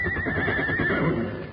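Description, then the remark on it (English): A horse named Joker whinnies loudly, a single wavering neigh that rises and trembles before trailing off, with no one speaking over it. “You'll never win an argument with that horse.”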